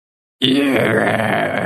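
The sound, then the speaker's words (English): After a moment of silence, a loud, rough, screaming groan bursts in and holds steady for over a second, a strained, wavering cry of a pumpkin shrieking as a man carves it with a blade on a makeshift table in a shed. “The pumpkin was screaming.”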